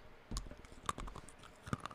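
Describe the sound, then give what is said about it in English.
Crunchy chewing of stiff, roughly 20-year-old gum from a pack of baseball cards, a few irregular crackling bites and snaps over two seconds, fairly quiet, with no talking. “I'm going to start chewing on this now.”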